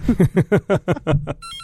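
A radio studio telephone, a board operator's emergency line that cannot be muted, rings with a rapid electronic trill of about seven quick, evenly spaced pulses, then a short high tone, with no one speaking over it.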